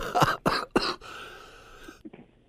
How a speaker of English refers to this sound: Sorry, I had to turn it off there. Coughing started.